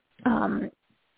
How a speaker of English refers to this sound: I'm going to sneeze. Hang on one second. One second. Yeah. Excuse me.